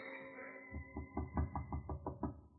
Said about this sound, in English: Her father knocks at the door.